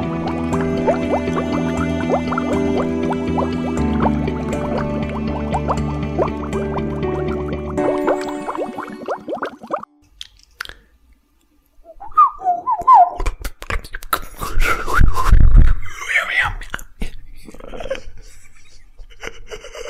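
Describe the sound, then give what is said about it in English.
A person whistles short, warbling phrases imitating an oriole's song, with breathy clicks and pauses between the bursts after a stretch of sustained tonal sound. “Can you mimic an Oriole's song?”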